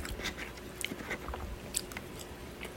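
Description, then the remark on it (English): Someone chewing a burrito, with soft wet mouth noises and small irregular bites and smacks repeating over a few seconds; no one talks. “Once again, burritos are good.”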